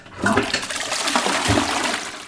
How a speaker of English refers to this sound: Can you get another flush, please, just to make sure it's all gone? Thank you very much. Clean bowl.